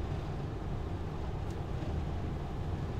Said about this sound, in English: truck's making noises. Yeah. That's scary. I don't like when your truck makes noises.